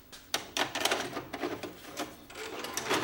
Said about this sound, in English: This week we watched Gleaming the Cube. Let's pop in the tape.